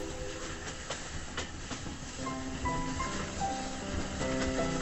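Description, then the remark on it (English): A train rumbles steadily past with rhythmic clickety-clack from its wheels, and brief tonal hoots rise over the noise partway through. No voices, just the continuous rolling clatter. “And the corn, like drunken grenadiers, topples tarnished, whispering at the hooting train.”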